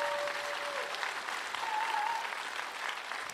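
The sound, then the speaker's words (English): A church crowd at White Rock gives a round of applause for people invited up to the platform, a dense wash of clapping hands sustained at even loudness for a few seconds, with a faint thin tone briefly sounding underneath. “Give them a big old round of applause there.”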